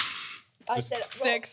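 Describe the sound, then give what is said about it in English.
A short, bright clatter of dice tumbling across a table, followed right after by a voice talking. “I rolled all six of my dice.”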